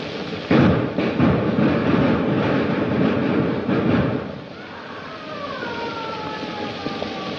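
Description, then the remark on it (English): Several sharp, booming gunshots in a film scene ring out over a loud, rumbling din, then the noise drops away and a thin, wavering wail of someone who has been shot rises and falls. “And you hear the gunshots and the moaning and a wailing of somebody inside that has been shot.”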